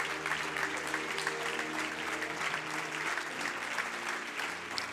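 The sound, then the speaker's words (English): An audience claps steadily in praise of God for the whole stretch, a dense, even wash of many hands with no breaks, while a low sustained musical drone hums underneath. “Come on, clap your hands and give God praise for it.”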